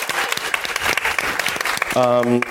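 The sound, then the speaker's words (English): Audience applause for the team who put the show together: a dense, steady patter of many hands clapping for about two seconds, followed by a brief sustained pitched tone at the end. “So, but let's all give them a round of applause for the amazing job they did putting this together.”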